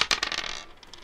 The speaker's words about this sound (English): And Brayden takes out his pocket, his purse, and starts removing gold coins. 5 gold coins to the first man to abandon this crate.